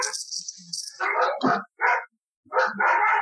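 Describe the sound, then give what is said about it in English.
Several dogs bark in a quick, excited burst of overlapping yaps and barks, loud, with a brief pause before the barking resumes. “I feel like Jack's dogs are going wild.”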